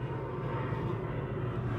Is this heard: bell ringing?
no